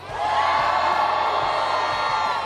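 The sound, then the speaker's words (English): A crowd at a Joe Biden rally in Virginia cheering in a loud, dense, unbroken roar that swells up in the first moment and holds steady, with scattered whoops and shouts mixed in. “Let's get to election denier Joe Biden yesterday in Virginia at a pro-death, anti-life rally where they're cheering, yes, we love children's organs, something like that.”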